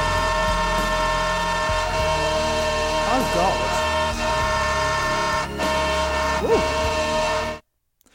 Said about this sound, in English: Oh my god. I have an example of this. When you told me the topic, I've been getting served a few on TikTok, and I found one where they replaced the lyrics of a very famous song with a train.